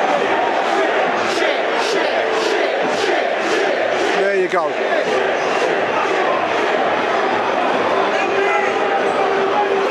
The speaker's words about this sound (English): Not good enough. Boos for the players that have come down to the middle ends. The whole thing feels very toxic.